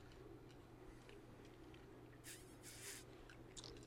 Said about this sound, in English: We're going to take a break for a coffee sip, all right?